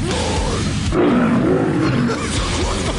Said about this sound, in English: Lions.